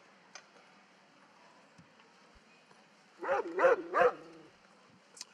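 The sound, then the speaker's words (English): Three quick, loud barks from Diana the dog, barking someone in to start, in a tight burst, standing out against an otherwise quiet background with a few faint ticks and clicks. “Well, whenever you're ready to start, we'll just give you we'll bark you in.”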